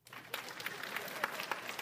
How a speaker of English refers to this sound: You can clap while I'm speaking. Clap now.